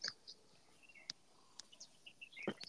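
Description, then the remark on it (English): Several birds chirp and tweet outside in a garden in the morning, quick high-pitched calls scattered over a soft background hiss, with a busier burst of chirping near the end. “Every time that's like your birds are like on fire.”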